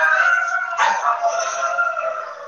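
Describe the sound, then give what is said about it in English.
Two service dogs howl together in a sustained, wavering chorus, fairly loud, with a brief yelp-like burst partway through. No one speaks over it. “At the time, I was training two service dogs, the two you hear now howling, and we were heading to Colorado.”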